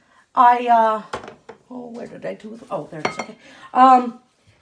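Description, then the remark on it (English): Spaghetti being tossed in a pot to coat it with vegetable oil, with a few sharp metallic clinks and soft scraping of utensils against the pot, partly under a voice making drawn-out vocal sounds. “So I've put oil in and I'm just going to toss the spaghetti so it can be coated with vegetable oil.”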